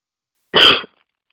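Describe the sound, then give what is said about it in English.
A single harsh cough bursts out fairly loud, lasting only a moment before silence returns; no talking accompanies it. “Go, cough them out.”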